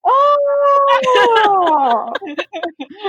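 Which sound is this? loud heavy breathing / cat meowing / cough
cat meowing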